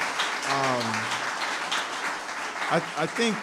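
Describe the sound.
An audience gives a guest a round of applause, clapping steadily for a few seconds, a dense wash of clapping that stays loud throughout, with voices calling out or cheering briefly over it.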